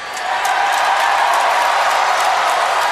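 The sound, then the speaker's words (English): A wrestling crowd cheers and applauds in a loud, steady roar on a wrestler's last night before retiring, with dense clapping running through it. The noise swells in at the start and holds without a break. “And by damn, I have one more night to feel this energy and to feel this crowd.”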